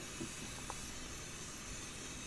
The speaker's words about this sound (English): There must be so much air in there. Oh, my God. It's steam, dog. He's steaming that shit.